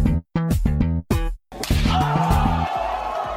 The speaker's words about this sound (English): so let's move on here to Does It Slap. Chris, summon our theme song. Theme song summoned.